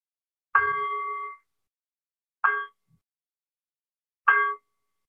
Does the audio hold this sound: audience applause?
no